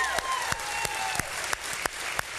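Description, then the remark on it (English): A church audience at Bay Community applauds its senior pastor steadily, a dense wash of clapping with sharper claps standing out at a regular beat, as if some people are clapping in rhythm. Faint tonal sounds sit underneath. “Continue your applause for your senior pastor, Pastor Jerry.”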